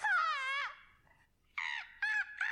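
A crow caws: one long, drawn-out harsh caw, a short pause, then three quicker caws in a row, loud and clear with no talking.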